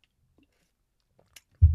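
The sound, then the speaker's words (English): Near-silence with a couple of tiny mouth clicks, then a loud, low, muffled gulp of someone drinking water that carries on to the end; no one speaks. “Let me drink my water right here, man.”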